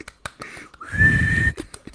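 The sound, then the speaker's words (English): A person imitates a tea kettle, giving a sustained, steady high whistle for about half a second over a breathy, rumbling hiss, with short puffs and clicks before and after. “Bubbling and brewing. She's whistling.”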